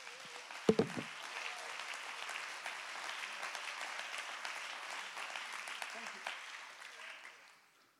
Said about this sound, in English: Come on, let's clap our hands and give God great praise.